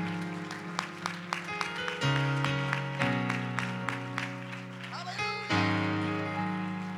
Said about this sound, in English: Hallelujah, hallelujah, hallelujah. Clap your hands unto the Lord and give Him praise this morning.